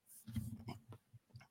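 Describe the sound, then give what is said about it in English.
A stifled yawn: a low, groaning voiced stretch with breathy hiss on top, trailing off into a few short muffled grunts, with no words spoken. “Sorry, fight through yawn there.”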